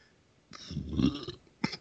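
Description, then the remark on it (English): A loud burp rumbles for nearly a second, deep and croaky, then a short second burp pops out right after. No one speaks. “Be a burp.”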